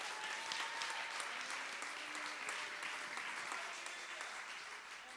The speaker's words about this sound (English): And you don't need to be troubled, church. Clap your hands if you believe in them.